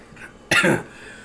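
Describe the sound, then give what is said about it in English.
A single harsh cough bursts out after a brief quiet breath, loud and raspy for a moment before fading into low background hiss. “Now I'm coughing again.”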